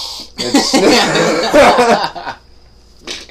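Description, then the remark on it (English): A person wine tasting sniffs the wine in an exaggerated, drawn-out way and then breaks into a run of loud coughs, ending with a brief final sniff. “sniffed it like I've never sniffed anything in my life.”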